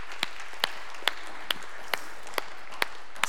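crowd, audience clapping

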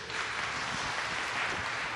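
crowd, audience applause

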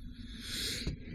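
human body sound, sneeze

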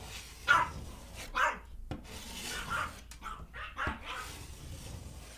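animal, dogs barking

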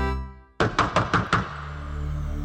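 household object, knocking on a door

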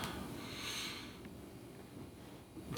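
human body sound, yawn

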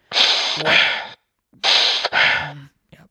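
human body sound, rapid heavy breathing

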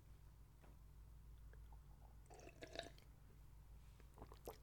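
food or drink, sipping water

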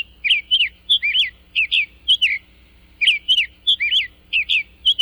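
bird, summer tanager song

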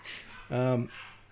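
animal, dogs barking

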